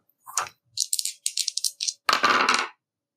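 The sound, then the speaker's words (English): Dice clatter and rattle in a quick burst of sharp, bright clicks, a short pause, then a rapid run of clacks ending in a louder, sustained rattle before going silent. The dice are rolled in a game to unleash powers and land on 9. “It's 9 on the dice.”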